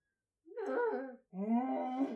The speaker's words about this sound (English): That's her breathing through a champagne bong, by the way.